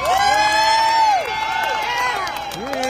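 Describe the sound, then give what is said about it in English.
A crowd cheers and whoops loudly, applauding Herschel and his family, with rising and falling shouted voices over a steady wash of clapping that carries on for about three seconds. “So how about a round of applause for Herschel and his family for putting up with all this trash?”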